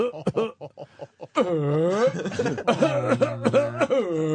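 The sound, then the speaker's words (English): A man imitates a feeble, dying man's cough, the Godfather cough in the tomato field: a handful of short, raspy bursts, then long, strained, wavering groans, fairly loud, with faint laughter-like sounds mixed in. “He's giving the Godfather cough in the tomato field.”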